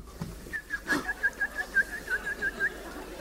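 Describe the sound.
A voice imitates a bird, giving a quick, steady run of about a dozen short, high chirping whistles, moderately loud over a faint background hiss.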